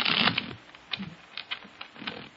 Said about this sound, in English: Now, I shuffle the cards.